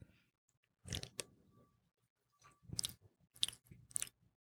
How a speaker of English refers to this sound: Oh, hey. Whoa, he already went in for a second sip. That could either mean it's good or bad.